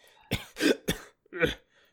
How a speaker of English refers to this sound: Is this a common thing that you have this horrible cough?